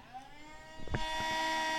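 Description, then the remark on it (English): A small motorized bubbler in a drink holder whirs with a steady, tonal hum, then a click or bump and a louder, hissy bubbling whoosh that continues to the end. A voice briefly says one word. “So not only has someone broken, but they've left my blow dryer running. There's bubbles in your drink holder.”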